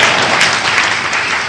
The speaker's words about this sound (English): Clap for the prophet.